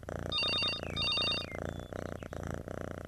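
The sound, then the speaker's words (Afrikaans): A house telephone rings twice in quick succession, each ring a rapid warbling trill, fairly loud over a low, steady background hum. “Die huisfoon lei.”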